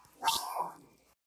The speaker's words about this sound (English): Dream was barking.